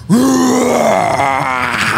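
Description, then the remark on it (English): A person imitates a roar: one loud, sustained, gravelly vocal bellow that starts abruptly, rises slightly in pitch, and holds steady for about two seconds without any speech, voicing a character roaring at a group of boars to intimidate them. “And that roar is just... Get in their face and just scream at them.”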